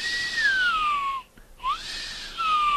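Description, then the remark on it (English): Someone imitates the whistle a vehicle engine makes when the motor is revved, with two breathy whistled tones: one slides slowly downward, then after a short break another swoops up and glides down, a loud airy hiss over both. “So does it whistle, and when you rev the motor up, it goes...”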